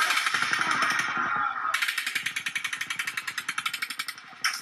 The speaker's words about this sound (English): There is a short interval here of 17 seconds. People begin to flee again. But then a third burst of fire opens up.